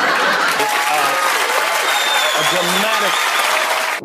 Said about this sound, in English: And that applause went on a whole lot longer than I let you hear it. Well said, Mr. Kimmel.